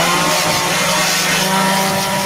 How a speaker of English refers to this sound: Woo. Woo. I love me some power tools.